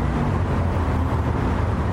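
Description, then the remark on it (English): A tour bus on an architecture tour rolls through city traffic, its engine a steady low rumble with a constant wash of road noise for the whole stretch without any voices. “Now, if you'll excuse me, I'm actually on a bus tour right now.”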